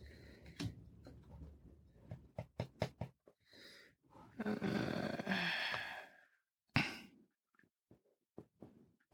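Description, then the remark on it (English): Writing sounds as someone writes down an answer: a few sharp taps and clicks, then a couple of seconds of steady scratchy pen-on-paper scribbling, followed by another tap and scattered faint knocks. “All right, I wrote stupid.”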